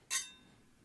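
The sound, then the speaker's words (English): A single bright clink of glasses touching in a toast, sharp at first and then ringing out with a thin, fading metallic tone; fairly quiet, with no voices. “cheers to you. Cheers.”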